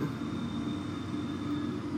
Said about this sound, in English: The train is moving.